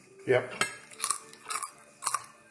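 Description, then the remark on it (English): Crunchy food being chewed in a series of sharp, crackling bites about every half second, with a brief murmur of a voice at the start. “Oh, that's crunchy. That is crunchy, yes.”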